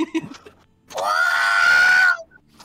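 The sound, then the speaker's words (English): A person lets out a loud, drawn-out imitation of the Wilhelm scream, a classic falling movie scream, about a second long and strained, after a brief murmur and ending in a short trailing breath. “I can do the Wilhelm.”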